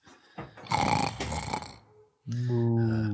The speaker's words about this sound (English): The cows right. Listen to them moo in their sleep.